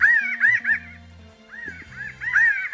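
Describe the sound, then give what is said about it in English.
Pinyon jay calls: a flock of nasal, slightly rising, honking notes in quick overlapping bursts, two clusters separated by a brief lull, clear with no talking. “The bird is the pinyon jay.”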